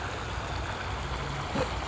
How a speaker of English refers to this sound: Just a creek and high weeds.